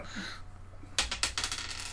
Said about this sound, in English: Roll more dice, why don't you?